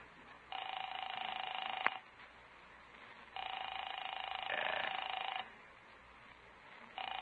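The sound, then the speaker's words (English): A telephone rings in long, buzzing bursts of about two seconds separated by short pauses, repeating steadily with no one speaking, as a call is placed to a home and goes unanswered. “I'll phone Paula.”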